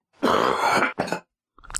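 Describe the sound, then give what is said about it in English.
A harsh coughing fit from a man who had been eating jalapenos: one long rasping hack, a shorter cough right after, then another cough starting up as the sound cuts off. “And he wipes his face with the cough rag.”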